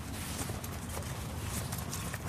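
horse hooves clip-clopping

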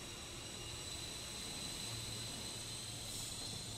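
train travelling

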